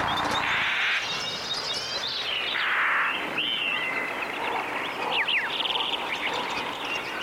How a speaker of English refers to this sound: Here's pitch shift. Let's try it.